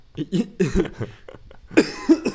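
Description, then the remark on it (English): A run of raspy coughs in quick succession, followed by two louder, harsher bursts near the end, with no speech around them. “I guess I want to add as a disclaimer for this episode, I have a cough.”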